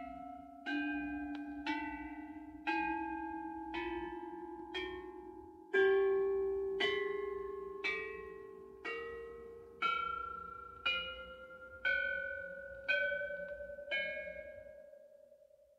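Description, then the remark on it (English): Bells are struck one after another, about fourteen evenly spaced strikes climbing gradually in pitch, each note ringing with two tones and fading slowly. The bells are clear, with no voices. “And those are the bells, with each bell having two sounds.”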